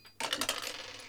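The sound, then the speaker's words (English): A D100 roll of dice in a tabletop game clatters across a hard tabletop in a quick burst of bright, rattling clicks that tumble rapidly and then gradually settle, with no one talking. “Give me a D100 as well, sorry. I'll do it this time.”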